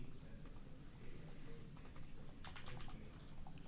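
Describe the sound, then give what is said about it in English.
Rapid, irregular clicking of keys on a computer keyboard, a steady flurry of taps over a low background hum, fairly quiet, with no voices. “I heard typing.”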